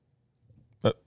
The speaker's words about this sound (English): He had to cough. I had to burp.